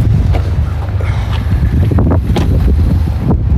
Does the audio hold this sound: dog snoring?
no